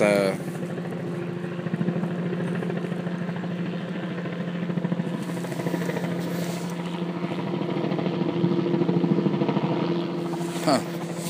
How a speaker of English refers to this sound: This chopper,